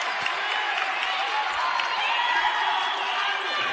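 A head coach claps his hands loudly and rapidly, as loud as he can, during a game; the clapping blends into a steady wash of crowd noise and cheering, continuing evenly without pause for a few seconds.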